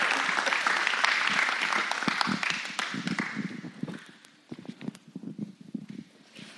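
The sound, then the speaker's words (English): A church crowd applauds as a woman comes up to share her testimony, with dense, steady clapping that thins out toward the end, leaving scattered individual claps before fading. “Can we give her a round of applause as she comes to share her story with us?”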